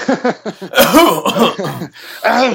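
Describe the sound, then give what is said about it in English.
A loud burst of coughing, several harsh rasping coughs tangled with breathy, laugh-like voiced bursts, ending with one more rough cough. “Sorry, I had a cough.”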